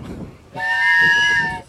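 A sustained train whistle blares suddenly and holds steady for about a second, loud, its layered tones ringing over a low rumble.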